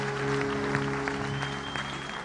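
An audience at a service claps hands for Jesus Christ in a steady, dense wash of applause, with a sustained tonal hum running underneath the whole time.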